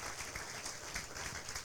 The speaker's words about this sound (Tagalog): Isang ang malakas na palakpak para sa Panginoon.